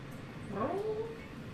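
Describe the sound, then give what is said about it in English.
A single drawn-out meow from a yellow cat with white spots and a dark black patch around one eye, being petted, rising then sliding down in pitch, clear over a low background hum, with no talking. “I'm sorry, I got distracted by the cute cat.”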